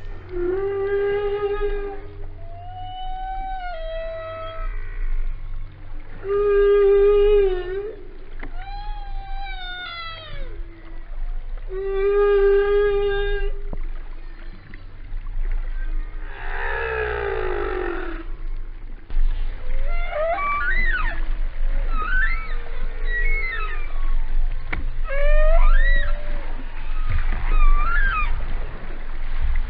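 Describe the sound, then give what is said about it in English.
Underwater song of a male humpback whale: a sequence of long, moaning, wavering tonal cries and rising whoops repeating in phrases over a low rumbling background, with no voices. “is the …, which a lot of our listeners are probably familiar with.”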